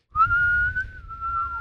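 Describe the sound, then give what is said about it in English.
A person whistles one long, steady note that holds its pitch before sagging downward at the very end, with a breathy, airy rumble underneath and no talking. “And I don't even know how to blow a whistle.”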